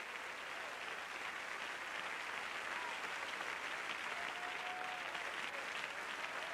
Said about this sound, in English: Would you clap your hands and give the Lord praise tonight, because he's already doing a mighty and a glorious work in this house.